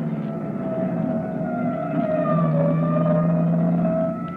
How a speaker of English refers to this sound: That siren is clearing the way for us. Let them get by. That's the salvage squad.